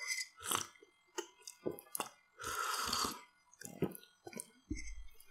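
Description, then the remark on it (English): Wet mouth sounds of someone sipping hot tea: short smacks and gulps around one longer, airy slurp, followed by a low swallow, with no talking. “Pardon me, I had to take a sip of my tasty tea here.”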